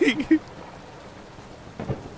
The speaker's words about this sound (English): Is there thunder in Chicago? I'm hearing a lot of thunder right now.